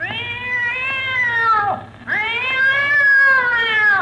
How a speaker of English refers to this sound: I told you not to step on that cat's tail. I don't see any cat. There is no cat. Just the tail.